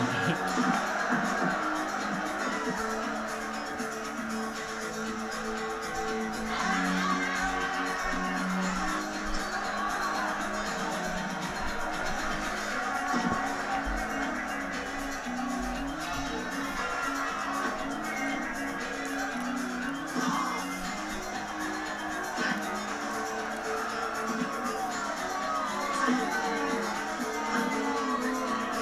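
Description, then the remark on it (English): A large crowd boos steadily at a Kumite fight in the film Bloodsport, a dense, continuous roar of low jeering voices that holds at a fairly even loudness for the whole stretch, with scattered shouts mixed in. “People are booing.”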